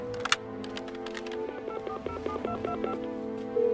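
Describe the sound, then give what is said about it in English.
A rapid series of touch-tone beeps as a phone number is dialed, about eight short tones in quick succession over a low hum, clear. “May I use your phone?”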